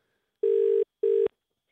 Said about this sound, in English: Well, we'll just give him a ring. While it's ringing, just block him, guys. Block Radio Mike on Instagram while we wait.